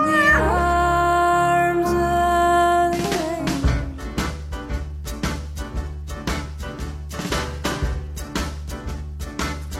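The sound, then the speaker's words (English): A drawn-out cat meow rises over sustained electronic tones, then a steady, thumping dance beat with bass takes over and continues to the end. “Good kitty.”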